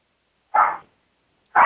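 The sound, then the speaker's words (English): A dog barks twice, loud, with about a second of silence between the two sharp barks; the second one is cut off at the end. No one is talking. “Oh, I hear the dog barking.”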